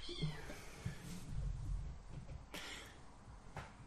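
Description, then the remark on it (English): A new pet cat meows a few times, fairly quiet, with a drawn-out cry at the start and brief sharper calls later, heard alone without any talking. “Sorry, we've just been interrupted by my new cat making noise.”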